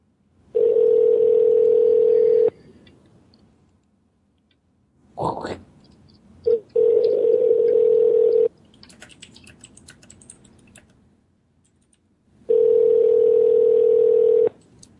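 An outgoing call's ringback tone buzzes three times, each steady ring about two seconds long with roughly four-second gaps, while soft clicks and tapping fill the pauses. No one speaks.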